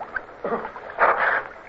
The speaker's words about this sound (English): The water closed over me, and I felt panic as I struggled back to the surface. It was cold. I could see nothing in the darkness with my eyes still dazzled by the roaring flames. Somebody splashed beside me.